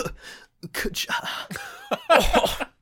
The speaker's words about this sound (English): Well, thank you. And Apophis coughs awake.